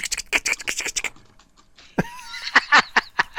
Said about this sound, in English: Oh, look at you hear all those keyboards?